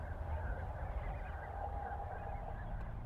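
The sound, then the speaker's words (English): A huge flock of snow geese calling on April 8, 2020, a dense, continuous wash of overlapping honks and yelps, with a steady low rumble underneath and no talking. “Snow geese”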